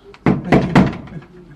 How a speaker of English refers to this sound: she's locked the door on you, Paul